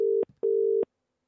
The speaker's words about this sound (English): There we go. Dial tone's always a good start.